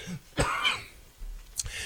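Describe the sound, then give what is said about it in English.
A person clears their throat with a rough, raspy burst, followed after a short pause by a second, sharper throat-clearing sound. No words are spoken. “Pardon me, I got a little frog here.”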